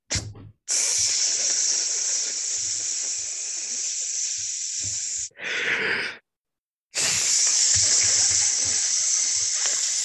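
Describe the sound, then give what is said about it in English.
A grill is started up with a Duraflame and a spark: a loud, steady sizzling hiss like food hitting a hot grill, running in long stretches broken by brief pauses, with a short whooshing burst between them. No one speaks. “But anyway, let's start up this grill for week 7.”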